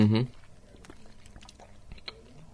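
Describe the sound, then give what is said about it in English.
Crunching as a yellow, hard-shelled lolly is chewed, a run of small sharp cracks and clicks at an uneven pace, after a brief burst of voice at the start. “Certainly got the crunchy outer shell by the sound of it.”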